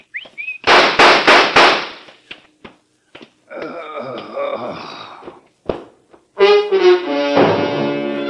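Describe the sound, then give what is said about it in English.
A boy on a street corner in New Orleans whistles a short, high signal that rises at the start on a dark night in drizzling rain, followed by a rapid burst of sharp, loud gunshots fired by two men. Scattered knocks and more tonal, whistle-like sounds and voices follow. “Then he saw a man walking rapidly toward him, and he began to whistle.”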